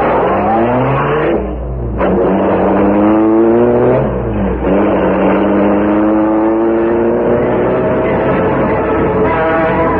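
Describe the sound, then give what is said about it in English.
A car engine revs and accelerates through several gear shifts, pitch climbing and dropping, loud, then settles into a steady driving hum with no voices. “You take the car onto the rear.”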